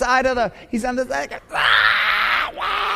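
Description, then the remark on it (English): A voice imitates a screaming toddler in his playpen: two short, wavering whiny cries, then a loud, harsh, sustained shriek that fills the last half, alone with no other talk. “The kid is screaming bloody murder in his playpen.”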